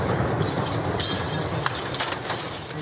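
Glass from explosions shatters and tinkles down onto the street outside a maternity hospital in Mariupol, Ukraine, after a Russian airstrike, in several sharp, scattered bursts over a steady, noisy outdoor rumble, moderately loud, with no one speaking.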